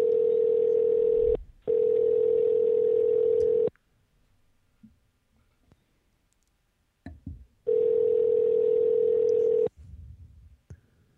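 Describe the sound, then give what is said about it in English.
A telephone ringing tone on an outgoing phone call: loud, steady, buzzy pitched bursts about two seconds long, two close together, then a pause with faint rustling before another burst. “Is it ringing?”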